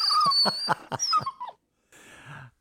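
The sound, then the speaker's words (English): A person imitates a frenzied dog, letting out a quick run of snarling, whining yelps, then a short pause and a final raspy growl. “Like a rabid dog over there.”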